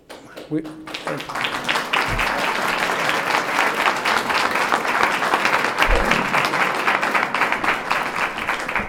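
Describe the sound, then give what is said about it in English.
An audience applauds steadily, dense clapping that starts abruptly and sustains at a loud, even level for the full stretch, with a few low thumps underneath. “I guess that shows if you stumble enough, people just clap.”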